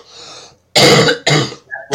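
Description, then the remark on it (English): A breathy rasp gives way to three loud, harsh coughs and throat-clearing bursts in quick succession from a person getting over an illness, with no talking. “I mean, on my live stream, I sounded like I was coughing up a lot.”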